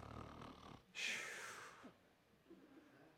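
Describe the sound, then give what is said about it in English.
A man's voice imitates a snore, as of Peter sleeping in prison between two soldiers: one loud, raspy, breathy snort lasting under a second, following a brief murmur of voice and then trailing into quiet. “He's snoring away.”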